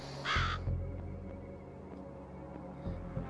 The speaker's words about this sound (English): And as he goes into the chorus, right as he's finishing up the chorus, you hear just the distant cawing of a crow.